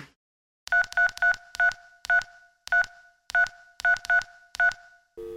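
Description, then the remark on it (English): A string of about eleven clear telephone keypad beeps as a phone number is dialed, pressed in quick uneven bursts with short pauses, then a brief different tone at the very end. “Go ahead and call it. What's the phone number?”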